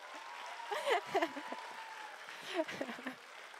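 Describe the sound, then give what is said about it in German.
An audience claps steadily for a few seconds in applause for the speaker's father, a dense even patter of many hands, with scattered voices and brief shouts rising over the applause. “Naja, ein Applaus für meinen Vater.”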